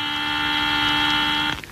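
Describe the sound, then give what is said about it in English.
An alarm buzzer in the cabin of the spacecraft Luna blares alone with a steady, harsh, rich-toned drone at constant pitch for about a second and a half, then cuts off abruptly. “And somebody turn off that buzzer, will you?”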